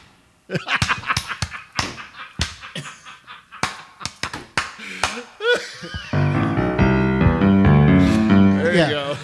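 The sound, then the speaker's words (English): About a dozen sharp hand claps land deliberately off time, at uneven, off-beat intervals, some quick and some spaced apart, before loud sustained musical tones take over for the final few seconds. “And I usually what I do is I try to make eye contact with him, and then I clap all off time.”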